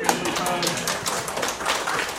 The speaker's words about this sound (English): So big hand clap.